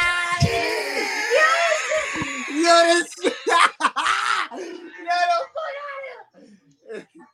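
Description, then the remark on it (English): A man lets out a loud, drawn-out exultant yell, mimicking someone shouting, followed by a burst of excited, animated talk that trails off quieter. “I can hear him yelling through his head.”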